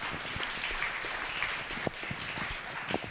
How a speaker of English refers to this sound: Thank you, team. Give the team a round of applause. Come on.